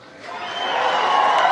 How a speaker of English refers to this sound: The speech was powerful, but the crowd would not shut up. And I'm not mad at them, but this is one of my big irritants with high-level Trump supporters. They're in there drinking.